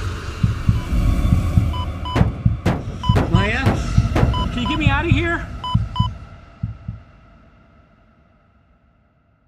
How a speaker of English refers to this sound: Do you hear that? That banging? It's coming from the tree. It sounds like someone is trapped inside the tree. Listen. It's a heartbeat. This tree has a heartbeat.